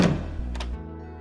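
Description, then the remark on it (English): A wooden cidery door swings shut with a solid, low thunk, then a quick latch click and a brief resonant ring fading out. No one speaks. “Yellowfly led the others into the sweet-smelling cidery proper, closing the door behind them”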